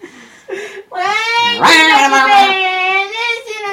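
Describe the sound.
A person wails in a drawn-out, strained falsetto, imitating a screaming cat: a few short yowls first, then one long, loud, wavering screech that slides in pitch.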